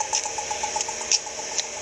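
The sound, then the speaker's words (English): Rapid, steady ticking from an accessible pedestrian signal at a traffic light intersection crosswalk, with a few sharper high chirps layered over a constant hiss of traffic noise. No one speaks. “It's an APS. Yet another sound to add to the busyness and noise of a traffic light intersection.”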